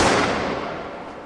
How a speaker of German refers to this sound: Ein Schuss!